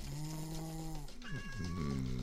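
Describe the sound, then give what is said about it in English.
The house cat Mookie meows loudly and insistently outside the door, a long drawn-out cry followed by wavering, yowling meows that rise and fall in pitch, with no one talking. “The house cat Mookie is not supposed to be outside.”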